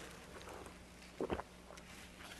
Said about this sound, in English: I made a bracha earlier. I'm just going to sip some tea here.